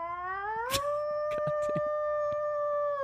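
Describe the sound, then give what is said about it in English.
A person imitates a wolf's howl: one long, sustained, rising then steady tonal wail lasting about three seconds, fairly loud, with a few faint clicks and shuffles underneath. “Of course I can howl. Howl.”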